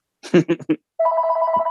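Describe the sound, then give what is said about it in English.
A short burst of voice, then a steady electronic telephone ring starts and holds loud, a bright buzzing tone continuing without pause to the end. “ooh, phone's ringing.”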